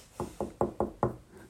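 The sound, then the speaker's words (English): Five quick, evenly spaced knocks on the small wooden door of Tinkerbell's house, fairly crisp, with no voices. “And so they checked Tinkerbell's house and they knocked on her little door.”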